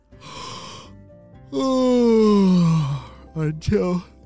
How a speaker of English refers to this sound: A whole bunch of yawns just came out of nowhere and attacked him and made him really sleepy. Have you ever had a yawn come out of nowhere and it just makes you super sleepy?